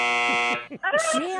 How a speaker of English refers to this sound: Oh, for crying out loud. Take the buzzer away from him. Okay, I guess that's a zero.